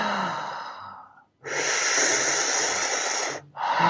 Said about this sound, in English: So essentially you're breathing in like you would through a straw. So it's exhale.